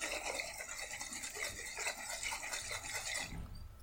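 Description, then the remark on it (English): Natural spring water sloshes and churns as it is shaken rapidly up and down in a container, a steady rushing noise lasting about three seconds before it abruptly stops. “If you look closely, I'm going to shake it up and down, okay?”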